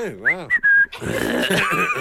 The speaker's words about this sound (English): Whistling. Whistling. Grunting when you sit down.